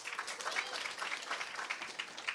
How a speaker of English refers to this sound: By round of applause, who has seen the movie?